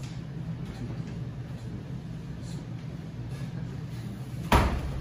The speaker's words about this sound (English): I heard the door close.